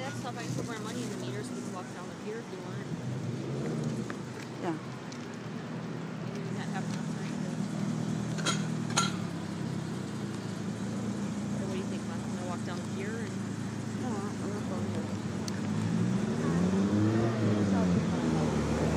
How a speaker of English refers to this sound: So crazy, DeLorean just passed by. Incredible.